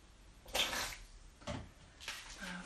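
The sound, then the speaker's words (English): Water splashes and pours into a measuring cup in a few short bursts, measuring out 1 cup of water, with a rising hollow tone near the end as it fills. Nobody speaks. “Just get a measuring cup out. So it's 1 cup of water.”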